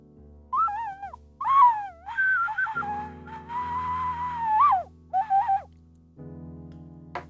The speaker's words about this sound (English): That's the high-pitched ocarina, not very friendly for poor old little dogs.